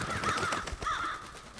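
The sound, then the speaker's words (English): Two harsh, raspy crow caws ring out one after another, loud, with a faint outdoor hiss beneath and no one speaking. “Crows when the bad guys show up.”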